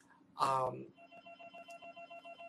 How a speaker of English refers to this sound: And phone ringing.